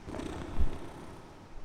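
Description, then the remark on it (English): A winged creature with paws, a tufted tail and a mostly human face purrs contentedly while lashing its tail, a steady, low, rumbling drone with a slight swell partway through and no voices. “And she is contentedly lashing her tail and humming to herself and purring.”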